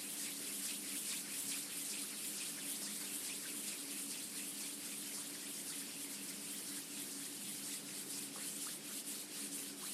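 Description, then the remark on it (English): A group makes a soft, steady whooshing hiss that imitates wind, likely by rubbing their hands together, as the start of building up a thunderstorm from body sounds. It holds at an even, fairly quiet level throughout, with a low hum underneath and no talking. “Now we can add all those sounds together to build up the thunderstorm, then calm it back down. Let's try it. Wind.”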